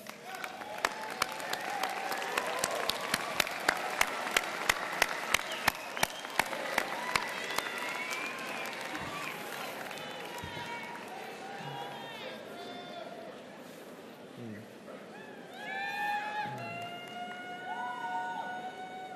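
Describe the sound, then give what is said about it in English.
At the UC Davis class of 2014 graduation, graduates stand and applaud their supporting friends and families with dense, steady clapping, crisp sharp claps prominent early on, then the clapping thins and softens while scattered cheers and whoops rise over it toward the end. “Love and honor, and give them a round of applause.”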